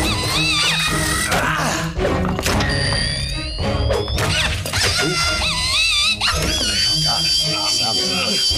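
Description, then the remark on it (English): A high, whining drill sound effect, the one used earlier when a woman is drilled into, rises in pitch for about a second and a half, buried in a loud, chaotic mix of screams, thuds and crashing impacts. “That was that sound effect that... We heard earlier that was used on that woman, so they drilled into her.”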